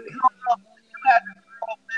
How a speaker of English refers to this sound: Your phone breaking up. No, they're my headphones. They going in and I'm fixing them now.